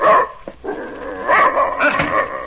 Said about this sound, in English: Keep that animal away from me. German shepherd dog, that's what he is. Come out of the army. Like I said, real bad. Vicious.